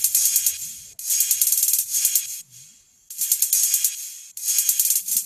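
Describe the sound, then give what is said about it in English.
A bright, sizzling hi-hat loop, chopped to fit a song, ticks in quick, steady sixteenths, cut into chunks with abrupt stops and a brief quiet gap before the pattern restarts. There are no voices. “Like I just use a hi-hat loop.”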